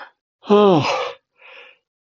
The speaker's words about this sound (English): Oh, excuse me, that yawning business.